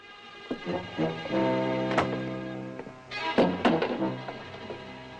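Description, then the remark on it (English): Several heavy, dull knocks thud against a door at uneven intervals as Hopkins and Stern arrive, heard over a steady, sustained musical drone with no one speaking. “So they get a knock on the door.”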